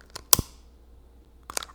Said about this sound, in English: But that's the candle I'm lighting today.